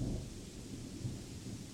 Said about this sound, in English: Observe the storm before you